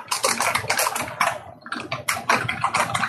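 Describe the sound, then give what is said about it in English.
Rapid typing on a computer keyboard, fairly loud, a steady clatter of keystrokes with a brief pause midway before the tapping resumes. No one speaks. “…, that's your keyboard, isn't it? That is my keyboard.”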